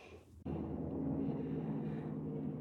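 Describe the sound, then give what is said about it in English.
A helicopter drones overhead, a steady low rumbling hum with a faint throbbing quality that holds for a few seconds after a brief quieter moment, with no one talking. “Can you hear that helicopter?”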